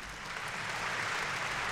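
A steady wash of crowd applause from an applause track, many hands clapping at once in a dense, even roar that holds at a constant level throughout, with no voices.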